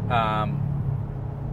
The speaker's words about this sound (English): one of the favorite diesel features is that when you park it, it goes rumble, rumble, rumble